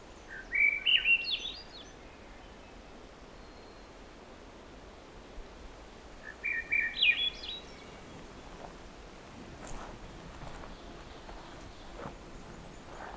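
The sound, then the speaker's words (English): A Swainson's thrush sings two spiraling, upward-rising flutey phrases, around one second and seven seconds, over a steady hiss of background noise, with faint clicks later. “But there's a Swainson thrush here, yet again.”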